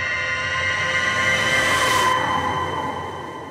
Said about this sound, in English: It's 5 a.m. As I reach the sidewalk, a shrill whistle sounds from the direction of Standpipe Hill.